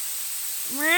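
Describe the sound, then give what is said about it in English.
A person's voice imitates a cat, letting out a single rising meow near the end after a stretch of faint hiss; the mimicked meow is clear. “Did I just meow?”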